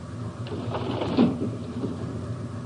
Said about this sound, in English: Turn off the bridge lights. I want to open this window. All right. There.